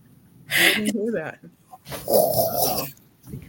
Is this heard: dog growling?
yes